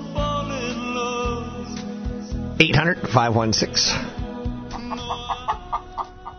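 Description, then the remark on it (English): A crooner's voice imitates a rooster crowing in one loud, warbling rise and fall over a steady musical backing, followed by a run of short, evenly spaced vocal bursts. “Then again, you can tell me he's also part rooster, and I want to know.”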